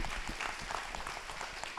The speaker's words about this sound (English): Yeah, you clap for that. Clap it up.